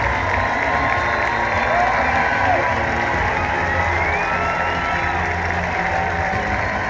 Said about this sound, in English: He dominated over his 5 1/3 innings, allowing just 1 run, and came off to a massive ovation from the Riders Field crowd. As Jared Getter claps his hands, takes the ball from him, and listen to this crowd.